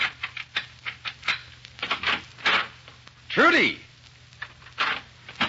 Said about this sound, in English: In a Chicago apartment hotel overlooking Lake Michigan, an attractive young woman dressed to go out for the evening is pacing the floor in a fit of ill temper. Presently, the cause of her ill temper inserts a key in the door.